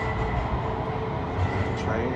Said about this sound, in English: Man, that train caught me over here. I think I sat and waited on for 10 minutes.